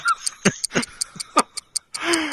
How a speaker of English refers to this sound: Oh. What's that ticking? That's the Doom Clock.